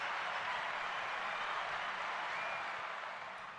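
Dense, continuous clapping like a round of applause, many claps blurring into a steady crackling wash that holds for a few seconds and eases off slightly at the end, with no one talking.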